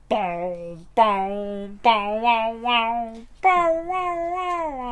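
A cat named Chester meows four times in a row, each call long, drawn-out and fairly loud, with a wavering, slightly whiny pitch and brief pauses between them.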